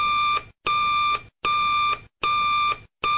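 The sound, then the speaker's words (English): A hotline telephone in a police commissioner's office, set off by pushing a button, rings loudly in quick, evenly spaced bursts, each ring about half a second long with brief silent gaps, repeating steadily with no voices. “then they would push a button on the bat phone. It sounded something like this.”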